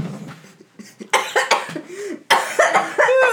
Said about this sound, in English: You got me, man. I'm the one coughing this episode.